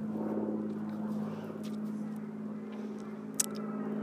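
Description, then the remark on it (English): A steady, droning engine hum from an aeroplane overhead holds an even pitch throughout, with one brief sharp click near the end. “There's a flying object in the sky making noise. And it's not a bird.”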